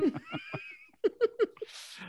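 A cat meows in a quick run of short calls, several chirpy mews followed by three sharper ones in a row, ending with a brief breathy rustle.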